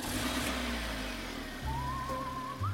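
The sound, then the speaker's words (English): A car engine being started in a parking lot rumbles low and steady, then kicks up louder partway through as it catches and revs, while a thin, wavering high tone glides upward over the idling motor. “In the parking lot, she fumbled for her keys, tossed her groceries in the car, and turned the engine on.”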